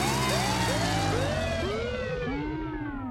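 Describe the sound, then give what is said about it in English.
An electronic 'surprise guest' alarm siren blares loudly and continuously, its rich buzzy tone sweeping up and down in quick repeated wails that drift slightly lower in pitch over time. No voices are heard. “It's just a new and improved surprise guest alarm.”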